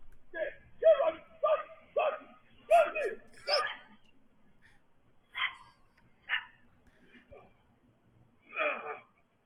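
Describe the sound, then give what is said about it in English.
A dog, Roxy, fighting a coyote that jumped out of the brush, darting around it, with a quick run of sharp barks and high yips at the start, then scattered yelps and whines spaced out over the following seconds. “A very bold and seemingly unafraid Roxy did not flee, but instead darted around the wolf-like beast”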